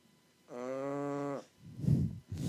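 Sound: dog snoring loudly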